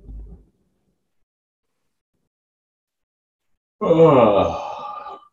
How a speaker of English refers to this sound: And then, yes, opening up into a yawn.